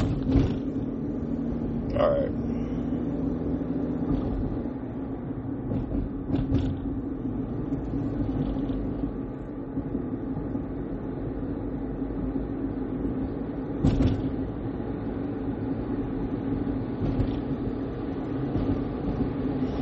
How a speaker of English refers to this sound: And then, sure enough, man, this big ass truck really gonna better not hit me either.